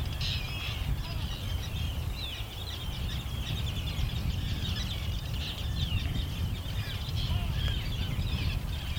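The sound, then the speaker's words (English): A dense colony of at least 60 pairs of terns calls continuously, harsh overlapping cries over a steady low rumble of wind and surf, with no one speaking. “60 pairs there at least, which is really good to see, because terns generally are not doing well in this country.”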